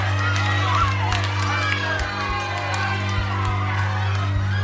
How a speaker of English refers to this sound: People are throwing bricks and objects at the house, breaking windows and stuff like that. There's heckling, there's shouting. So clearly that crowd wasn't exactly happy to see Jemima Wilkinson come into town.